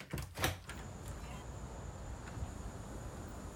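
A back door is opened with a quick rattling clatter at the start as someone rushes outside, then gives way to steady outdoor ambience and a faint, continuous high-pitched whine, like insects in the background.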